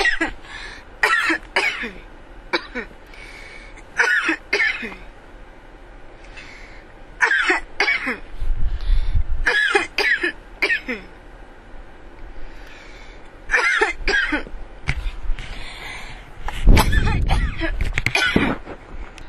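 human body sound, coughing fit

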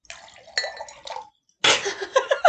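household object, glasses clinking

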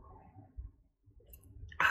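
food or drink, sipping coffee

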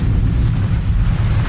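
nature, rainstorm

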